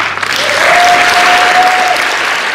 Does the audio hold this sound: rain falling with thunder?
no